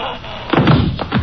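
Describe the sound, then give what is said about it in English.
A person is struck over the head with a gun: a dull, heavy blow lands with a muffled thud, followed by a couple of softer knocking impacts. “I'm going to wear that gun out, hitting people over the head with it.”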